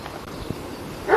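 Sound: dogs barking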